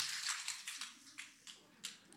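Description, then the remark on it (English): Several soda cans are popped open together by a group on a count of three, in quick, overlapping succession, each crisp snap followed by a bright, hissing fizz that carries through the whole clip at a fairly low level. “And we do this tradition where we all open our sodas together to hear this awesome fizzy sound together.”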